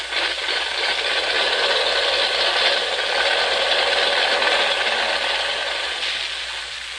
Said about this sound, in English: Here, I'll try it. This is the starter button. Uh-huh. Oh, this engine's running okay.